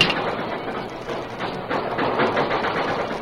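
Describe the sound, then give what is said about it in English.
A steam work engine thrown into reverse with the throttle opened wide, the work train moving backwards, a dense, steady clatter of rattling machinery and hissing rumble, loud, with no voices. “He put the work engine in reverse and opened the throttle wide.”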